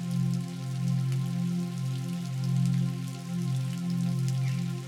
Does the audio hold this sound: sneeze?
no